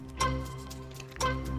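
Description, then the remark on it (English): A countdown clock set to 60 seconds for a quiz game ticks twice, about a second apart, each tick crisp and moderately loud over a steady low hum in the background. No one speaks. “Let's put 60 seconds on the clock.”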